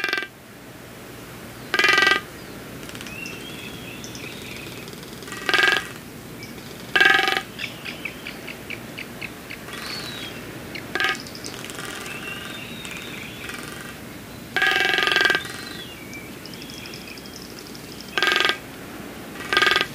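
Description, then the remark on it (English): Short bursts of rapid, hollow drumming taps from a frigate bird's beak on its balloon-like inflated throat pouch during mating season, on Seymour Island in the Galapagos, repeating every few seconds amid warbling, chattering bird calls, with a quick train of clicks in between. “but instead of just for show, they also tap their beak against these balloons, and it makes this really distinct sound.”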